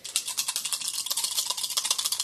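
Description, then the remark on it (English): Dice rolled for an athletics roll rattle and clatter in a quick, continuous burst of bright, hard clicks lasting a couple of seconds, with no voices over it. “Because rolling dice has worked so well for me tonight.”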